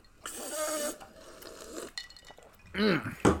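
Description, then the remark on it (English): Glass clinks and rattles, a bright jumbled burst followed by scattered knocks, with a brief vocal sound near the end before one last sharp clink. “I forget there's glass in there, but it's okay.”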